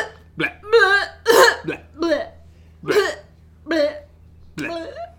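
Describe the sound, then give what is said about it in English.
A voice makes a rapid series of about seven loud gagging and retching noises, each short burst harsh and throaty, one after another with brief gaps: a slight cough turning into a gagging fit. “As you can hear, BL3H starts as a slight cough and soon turns into a fit of blez.”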